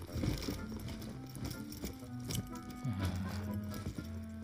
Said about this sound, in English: His heart raced as the guards passed, mere inches away, their footsteps echoing in the stone confines.